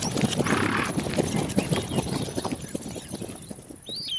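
horses' hooves clip-clopping

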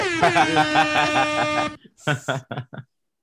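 air horn sound effect

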